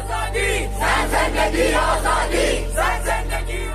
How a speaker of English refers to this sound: There are young Iranian women and girls burning their headscarves in public, chopping off their hair, with crowds around them chanting, "Death to the dictator," shouting, "Women, freedom, life."